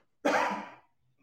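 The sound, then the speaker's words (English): A single throat clearing during a Bible lesson, fairly loud, a short raspy burst lasting about half a second before fading into quiet. “Clear my throat there, a little agua.”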